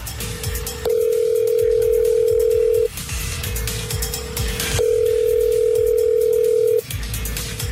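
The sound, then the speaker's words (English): A telephone ringing tone heard down the line on a third attempt to reach a contest winner: two long, loud electronic rings of about two seconds each, separated by a quieter steady tone, with no one answering or speaking. “Let's call our third attempt.”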